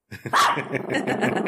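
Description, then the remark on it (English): A dog protecting her chickens lets out a sharp, loud bark at birds, then keeps up a rough, rumbling growl broken by quick repeated pulses, with no one talking over it. “Yes, going to tell the big dogs to go bark at the other thing.”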